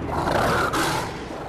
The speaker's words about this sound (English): Roar. It's like a big boss at the end of a game.